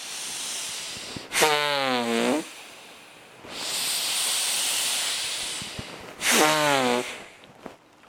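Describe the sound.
A person makes long, steady hissing breaths that imitate a snake, both inhaling and exhaling with the hiss. The breaths are moderately loud and are broken twice by short wavering voiced sounds between the sustained hisses.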